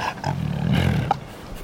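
A 9-year-old white tiger on a leash, with Roy by the pool at the Jungle Palace in Las Vegas, lets out a deep, rumbling roar, one sustained growling breath that swells and fades over a second and a half, with no voices.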